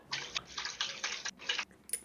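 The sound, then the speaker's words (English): Water splashes in a series of short, irregular bursts, like a hand sloshing through a filled tub, moderately quiet, with no one talking. “I was just splashing water now.”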